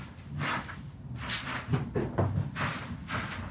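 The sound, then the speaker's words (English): A sliding elevator door closes with a series of swishing, rumbling pushes and a couple of soft thuds, moderately loud, with no one talking. “The door closes and they ride for a beat.”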